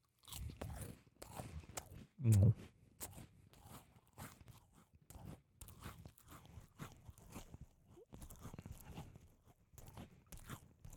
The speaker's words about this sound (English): I'm eating some Ritz crackers, and they're the cheese ones, so if you hear me crunching on them, mind your goddamn business.